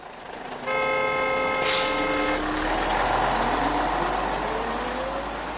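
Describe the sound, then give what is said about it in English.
A bus rumbles, a steady horn-like tone sounding before a short, sharp hiss of air brakes, then the engine drones and winds up as it pulls in. “Waiting for buses is such a tedious thing, would you agree?”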